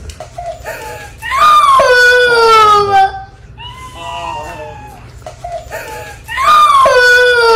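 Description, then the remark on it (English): A child cries hard in three long, high-pitched wailing bursts, each sliding downward in pitch, with shorter shaky sobs and breathy pauses between them. “This woman just wanted to record her kid crying and share it with all of us.”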